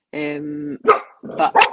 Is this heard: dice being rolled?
no